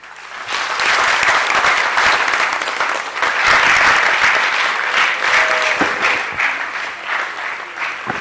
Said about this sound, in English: Another round of applause for her.